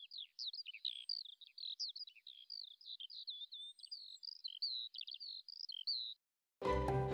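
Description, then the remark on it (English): Birds chirping and singing in a rapid, continuous stream of bright, high warbling notes for about six seconds, clear, then a short pause before a fuller sound cuts in. “a gift that I trust will be there forevermore, a place for the birds to gather, those birds who flew high above the Western Front and continue to fly above the old front line.”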